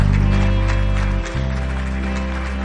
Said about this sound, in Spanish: Denle un aplauso al Señor por el grupo de alabanza también.